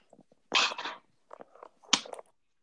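A dog lets out a few sharp barks in quick succession: a loud double bark, a softer yip, then another loud bark, with no one talking.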